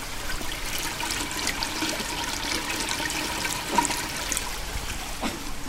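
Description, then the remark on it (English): Spring water pours gently and steadily into a pool, a continuous splashing trickle with small bubbling accents and no voices. “And then it pours in very gently.”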